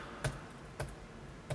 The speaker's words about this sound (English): Yeah, hit that keyboard angrily. Take it out on it.